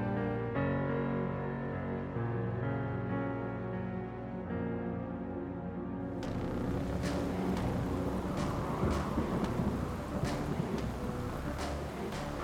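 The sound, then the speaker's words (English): A low sustained drone gives way to a sudden loud crack of thunder, followed by heavy rolling rumble with sharp bursts continuing to the end. “And I think, yeah, there's just like a crack of thunder in the background”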